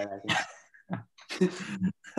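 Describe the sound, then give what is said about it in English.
A small fluffy dog lets out a few short, high yapping barks with whiny edges, fairly loud, in quick uneven bursts. “That's her dog. Oh yeah, that's cute. Little fluff ball.”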